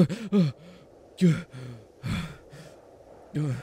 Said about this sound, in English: You have gotta stop freaking out every time you fall asleep. You keep falling asleep and then breathing all heavy.